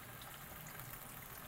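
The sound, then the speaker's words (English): Chicken bone broth pours steadily into a pot of chicken to deglaze it, a continuous soft splashing, gurgling rush that stays even for the whole short moment, with no talking over it. “So pour that in halfway. Halfway up the pot.”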